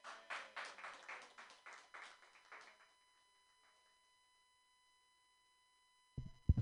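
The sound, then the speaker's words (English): Audience clapping for the last comedian at a comedy show: a quick run of distinct, rhythmic claps that gradually fades out over about three seconds, then silence until a short noisy burst at the end. “I'm your last comedian. Clap for me.”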